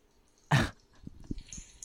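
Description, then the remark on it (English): A dog or cat lets out one short, loud, raspy vocal burst, followed by a few faint, low thumps against a quiet background. “Is that a dog? Oh yeah, that's his cat, I think.”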